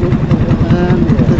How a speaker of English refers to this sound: What sort of power unit have you got in this? This is a 200cc Honda unit, basically a go-kart engine with simple go-kart technology.